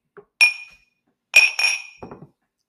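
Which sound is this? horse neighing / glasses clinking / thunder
glasses clinking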